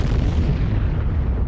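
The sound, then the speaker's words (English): A massive explosion ripping open Highway A29, the main coastal highway near Palermo, as Falcone's white Fiat Croma headed east from the airport: a loud, sustained low rumble with heavy bass filling the whole moment, dense, with no voices present. “The explosion was deafening enough to grind the whole highway to a halt.”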